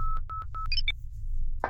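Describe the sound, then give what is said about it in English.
A spaceship proximity warning alarm: three evenly spaced, steady mid-pitched electronic beeps, then a couple of quick higher two-tone chirps, over a low rumbling hum, ending in a short noisy burst. “What's that? Proximity warning alarm.”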